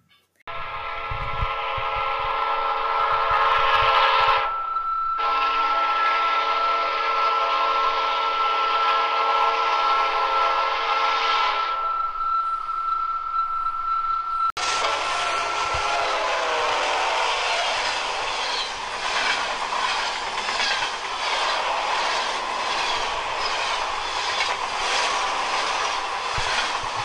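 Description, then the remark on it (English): A loud train whistle blows in two long blasts, then gives way to the heavy, steady roar and clatter of a train engine running on train tracks, heard on a phone voicemail, with no voices. “The voicemail is the loudest train track engine running noise, yes. A whistle, and then this guy who says so loud, he like yells it, "Killed by train!"”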